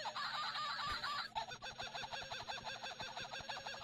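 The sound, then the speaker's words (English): A toy kookaburra's electronic chirping call plays loud, opening with a harsh squawk before breaking into rapid, rhythmic cackling bursts that continue steadily, with no voices. “But also, it speaks. It chirps.”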